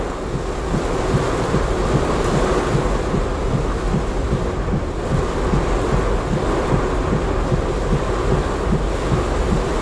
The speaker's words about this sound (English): It's raining men and fucking water!